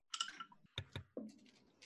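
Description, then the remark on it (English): Dice clatter across a hard tabletop as players roll during a tabletop game: a quick rattling burst, then a few sharp separate clicks as they bounce and settle, fairly crisp, with no talking. “That one to the dice jail.”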